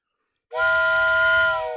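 A whistle blasts suddenly out of silence, one loud, steady, breathy tone held for over a second without wavering, with a rich, chord-like quality. No one speaks.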